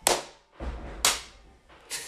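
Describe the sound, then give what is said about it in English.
Three sharp hand claps at uneven intervals, made as a demonstration of how to clap, each a loud, bright crack that quickly fades, with a dull low thump between the first two. Nobody speaks. “Here, clap your hands like this.”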